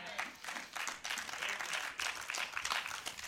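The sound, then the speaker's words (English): A light, scattered golf clap from an audience, many hands clapping softly and unevenly in a steady patter, fairly subdued and without any cheering or voices. “That was kind of a golf clap.”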